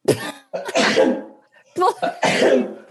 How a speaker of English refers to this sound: I'm about to sneeze.